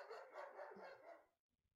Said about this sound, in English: That was my German Shepherd barking.